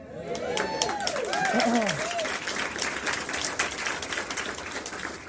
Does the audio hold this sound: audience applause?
yes